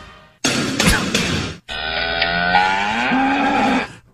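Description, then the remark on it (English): A cow moos loudly: a rough, breathy bellow followed after a brief gap by a long, drawn-out tonal moo that holds steady for a few seconds. “Good cow this week. Really impressive.”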